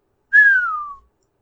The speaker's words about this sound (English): Ashido whistled lowly, leaning back and looking impressed.